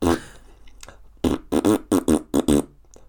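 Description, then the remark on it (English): A person imitates a fart with their mouth: a breathy burst, a short pause, then a quick run of about six loud, buzzing voiced bursts, alone. “I must have been about 14, and it just came on TV, and I just split my fart.”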